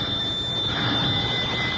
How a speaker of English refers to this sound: It began when David, my husband, he's an artist, rang Miss Mamie's old-fashioned doorbell.